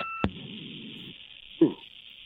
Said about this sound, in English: Now, are you getting the interference I'm getting here? Is that cleared up? Yeah, it's gone now.